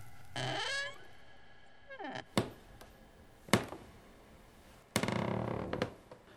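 A few thin, high-pitched kitten-like mews rise and fall from the basement of a house, spaced out over several seconds, with a couple of sharp taps or knocks in between and no talking.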